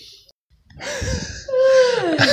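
A person yawns: a breathy intake of air swells into a drawn-out, voiced groan that slowly slides downward in pitch, fairly close and clear, with no talking.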